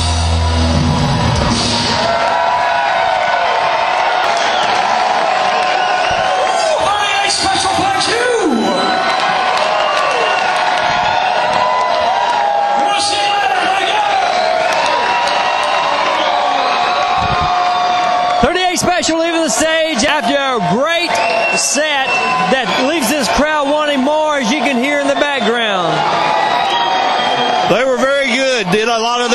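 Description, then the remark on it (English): A concert crowd, on its feet, cheers loudly for more at the end of the show after the band has left the stage, a steady roar of many voices with piercing whoops, yells and shouts rising out of it, building in the second half and never letting up. “And as you can hear, they're wanting more out of this.”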